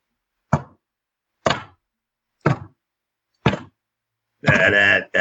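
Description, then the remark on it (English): Four sharp, evenly spaced hits on a drum skin, about a second apart, each with a quick decay, followed by a louder, sustained, more tonal burst at the end. “Bang, bang, bang, tap, tap, tap. That's what it does. Skins.”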